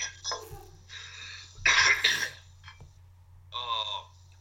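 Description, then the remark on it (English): Coughing with some throat clearing: a short raspy hack early on, then a louder burst of coughs in the middle, followed by a strained, voiced clearing sound, over a low steady hum. “I'm worried I'm going to cough and throw up again.”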